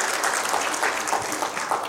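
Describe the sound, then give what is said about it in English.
A church audience applauds steadily after hearing that $7,024 was raised for missions, many hands clapping in a dense, bright, continuous patter that stays loud throughout with no voices above it. “You can clap for that.”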